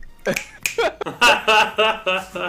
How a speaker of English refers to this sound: So we're just going to give him two snaps because we don't clap here.